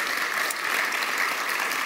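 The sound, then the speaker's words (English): A church crowd applauds steadily to bring up a church member who will read the text in Romans, a dense wash of many hands clapping at an even, fairly loud level throughout, with no voices standing out. “bring him up with a round of applause.”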